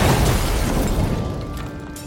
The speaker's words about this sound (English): Perhaps there just wasn't time, because very soon after, the bomb exploded.